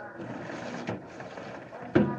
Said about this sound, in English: A plane. There's a plane out there flying low.